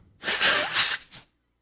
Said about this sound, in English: We don't hit the sneeze button. We don't do anything. We just sneeze.